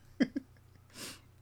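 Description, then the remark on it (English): A single sneeze: two short voiced catches lead into a breathy, hissing burst of noise that swells and fades. No talking. “Bless you, bro.”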